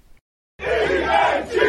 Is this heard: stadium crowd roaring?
yes